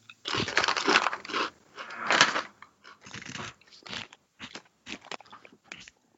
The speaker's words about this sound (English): So, we apologize in advance for all the crunching? Not really in advance. We've been crunching for like 3 minutes. That's true. We apologize in retrospect for the crunching.